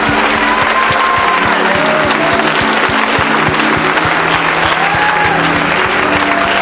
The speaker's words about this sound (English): Would you clap your hands for your new family this morning?